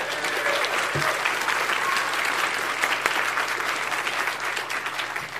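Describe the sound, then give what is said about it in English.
A crowd claps steadily for several seconds, a dense, even wash of applause with no pauses and no voices standing out; an audience at a PAX panel applauding the PAX staff. “So can we get a round of applause for the staff at PAX?”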